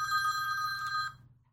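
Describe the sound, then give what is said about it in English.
A phone rings with an incoming call from Bruce Weaver, in one sustained, bright burst lasting about a second before cutting off, loud, with a low hum underneath and no talking. “You should know to turn your phone off.”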